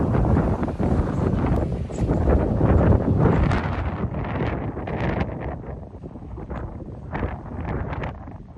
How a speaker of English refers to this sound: It's strong. Wow. Still windy out here.